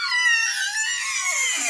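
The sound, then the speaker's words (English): The speaker's own home kitchen door creaks open with one drawn-out, high squealing groan whose pitch wavers, then slides lower toward the end. The creak is fairly loud and steady, with no voices. “That's the actual sound of my own kitchen door.”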